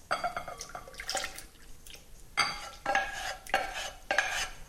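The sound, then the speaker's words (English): A hot milk mixture with dissolved gelatin pours from a pan into a large bowl, with a series of short scrapes and clinks of metal against crockery as it empties. No one speaks. “Now that's done, I'm going to pour it into a large bowl.”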